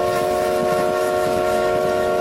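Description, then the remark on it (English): A loud, sustained steam train whistle blasts steadily with bright harmonic tones, backed by a low rumbling of rail noise throughout, heard through the calm night air from aboard the Lethbridge Express. No one speaks. “When we heard a shrill whistle blast through the calm night air.”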